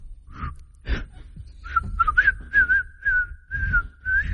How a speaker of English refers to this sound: I challenge you to regular whistle with your lips if you're happy and you know it better than this woman does it with her nose.